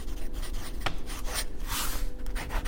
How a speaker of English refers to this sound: We try to make sure that when we do test the nib, so it's in a quiet place, but I always like to hear that noise of the nib against paper.